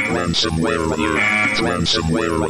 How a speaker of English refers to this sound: if we can resist saying that word out loud, we will know that the next time we hear that alert, the computer has been infected.